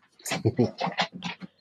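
An excited dog named Odie, doing zoomies, lets out a quick run of whimpering, yelping bursts mixed with panting, about six short sounds in under two seconds, fairly loud.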